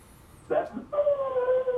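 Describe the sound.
A voice imitates a howling metal-style vocal, fairly loud: a brief strained yelp, then a long, steady, sustained howl that holds its pitch until the end.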